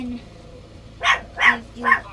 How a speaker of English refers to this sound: You, who is she barking at? I don't know.